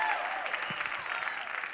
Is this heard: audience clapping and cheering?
yes